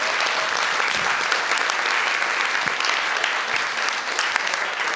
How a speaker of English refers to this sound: Fantastic. Round of applause,